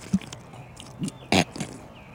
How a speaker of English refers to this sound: I'm just going to take a sip of my water. I'll do it too.